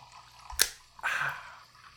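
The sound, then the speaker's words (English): A sharp snap, then about half a second of crisp fizzing hiss from Schweppes seltzer water that slowly fades, with no voices. “That's a lot of sizzle on going. It sounds crisp.”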